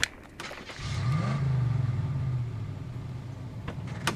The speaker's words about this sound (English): drive the truck over.